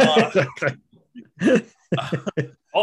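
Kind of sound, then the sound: human body sound, cough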